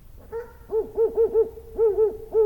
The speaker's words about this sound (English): Wait, Winky's the bird? The owl. The owl? Yeah. They got a name for it? Yeah.